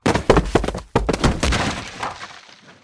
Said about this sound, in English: Unless, of course, you accidentally step off a ledge. Fall down a flight of stairs.